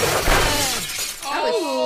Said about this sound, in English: His first laser story is out of Golden, British Columbia. 63-year-old Ruth Hamilton was in bed the other day when a loud crashing sound woke her up.